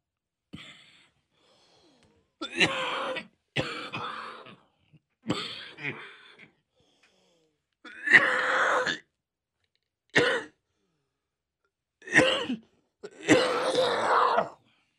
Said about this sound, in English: Tell you what, this is not going to be a very interesting podcast if I'm sitting here coughing the whole time. Hopefully that'll go away soon. Pardon the interruption.